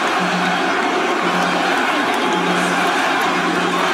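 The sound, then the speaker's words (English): A huge crowd at Madison Square Garden in New York City roars and cheers continuously as Donald Trump arrives with Tucker Carlson and Dana White, a dense, loud wall of voices with a faint low musical drone buried beneath, no individual speech standing out. “Huge reaction there, Madison Square Garden, where I thought New Yorkers didn't like Donald Trump.”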